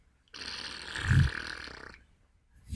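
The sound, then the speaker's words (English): A single wet, buzzing mouth fart blown at a microphone, lasting about a second and a half and swelling to a loud peak midway, with no talking over it. “At least I was just a mouth fart, and I didn't actually turn my ass to my microphone and try to let rip.”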